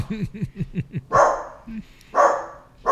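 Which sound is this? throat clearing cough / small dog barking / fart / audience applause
small dog barking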